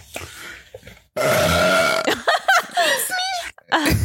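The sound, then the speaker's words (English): A loud, drawn-out burp rumbles for about a second, prominent, followed by bursts of voiced sounds and talking. “When was the first time you burped and or farted around me”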